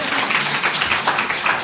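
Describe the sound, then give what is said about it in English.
An audience claps together in a steady, dense patter for a couple of seconds, the sound holding fairly even, with no one speaking over it; they clap to answer whether they have read the Alice Munro story behind the film Hateship, Loveship. “Show of hands, how many people have read the Alice Munro story that it's based on? Clap. Don't show of hands. Clap.”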